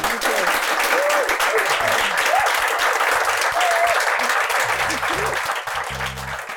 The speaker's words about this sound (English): So what we'll do is, could everyone just give a huge round of applause for Liz?